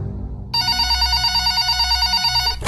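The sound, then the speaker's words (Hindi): A telephone bell rings at exactly 11 o'clock, steadily for about two seconds, a bright continuous metallic trill starting abruptly over a low background hum, then cutting off. “ठीक 11 बजे फोन की घंटी बजी।”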